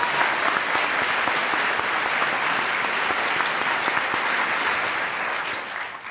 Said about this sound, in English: Give a applause for them.